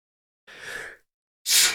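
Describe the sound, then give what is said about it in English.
A single sneeze: a breathy, drawn-in 'ah' lasting about half a second, a brief pause, then a sharp, loud hissing burst. No talking. “First sneeze on the podcast.”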